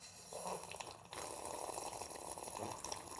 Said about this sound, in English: See how I put the sip in for the beat? Did you catch it? I don't need no sip in the beat. No, babe, listen. It's like a sound effect.